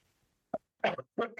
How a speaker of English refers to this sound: Right, should we start again? Because I'm coughing. That was my fault.